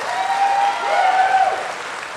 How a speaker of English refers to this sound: if you think the second question, what discussions did you have during the campaign regarding Russian sanctions, was fake, please indicate that with applause.